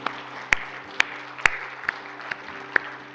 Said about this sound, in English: Let's give these people a hand clap and those online, amen.